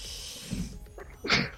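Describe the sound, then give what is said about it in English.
A single sneeze: a short wheezy intake of breath, then a sharp, hissy burst that cuts off quickly. The background is quiet with a low hum and no talking. “Bless you.”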